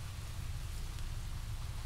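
Steady rain falling in a continuous, even hiss with a heavy low rumble underneath, quiet and unbroken throughout, with no voices.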